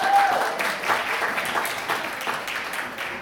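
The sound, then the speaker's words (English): A crowd claps steadily for a few seconds, a dense, even patter of many hands at moderate loudness, with a faint whistle or cheer near the start. “Round of applause”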